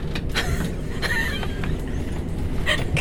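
A steady, low rumbling drone fills the interior of a moving train carriage on a service to London Charing Cross, with faint metallic squeals and rattles rising briefly above the constant running noise. No one speaks.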